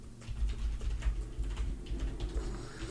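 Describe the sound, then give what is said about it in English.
Quick, irregular keyboard clicks tap away for a few seconds while someone types a Google search, a steady run of light keystrokes over a low background hum, with no one speaking. “Nothing says cool podcast like the clicking.”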